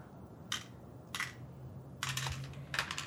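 Dice clatter across a tabletop in a few short, rattling bursts, with a longer tumble near the end, as a player rolls for agility in a game to catch thrown keys; fairly quiet, with no talking.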